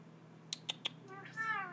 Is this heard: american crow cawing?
no